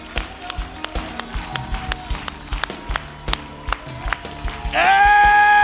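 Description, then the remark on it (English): An audience claps hands in a steady, brisk rhythm over low musical tones, then a loud sustained chord swells in near the end as the clapping is swallowed up. “Everybody clap your hands and shout.”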